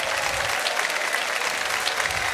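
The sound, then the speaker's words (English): A crowd applauds steadily for military veterans who have served America, many hands clapping in a dense, continuous wash of sound that stays loud and even throughout, with no voices rising above it. “Now, I would love an incredible round of applause for all of you.”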